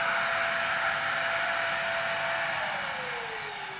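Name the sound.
vacuum cleaner running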